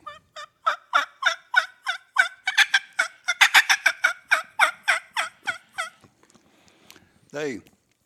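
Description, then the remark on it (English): A man's voice imitates a wild turkey gobbler's gobble: a loud, rapid rattling burst of about twenty quick throaty pulses over six seconds, then a pause and one short, falling squawk. “That's a gobbler.”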